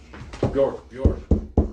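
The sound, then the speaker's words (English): A brief vocal sound, then three sharp knocks in a quick, even rhythm, fairly loud, like knuckles rapping on a door. “You wake early the next morning to a knock on your door.”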